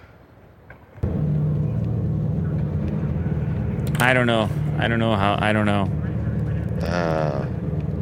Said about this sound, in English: They're amplifying a sound that is normally basically silent to your ears. But that sounds like a gas-powered engine.